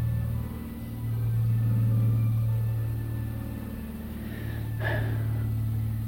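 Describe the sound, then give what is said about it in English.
A passing airplane's low, steady engine rumble, heard through the walls of a house, drones throughout, swelling slightly and holding a deep hum, with a brief faint click partway through and no talking. “Wait, there's an airplane.”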